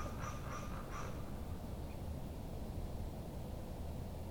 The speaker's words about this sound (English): The calm of the fall morning. The vibrance of the diffused sunlight through the leaves that remain. And the beautiful birds offering their songs of safety and freedom.